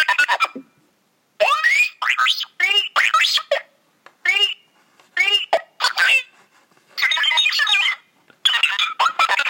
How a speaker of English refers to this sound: R2-B1, astromech droid on the Naboo Royal Starship.